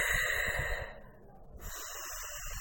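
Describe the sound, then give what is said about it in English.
A deep breath in a breathing exercise: a long airy inhale through the mouth, a brief pause, then a softer, hissing exhale through the nose, with no talking. “And so breathing in the mouth, deep breaths, out the nose.”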